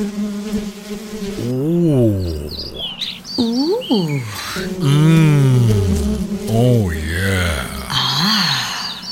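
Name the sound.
birds chirping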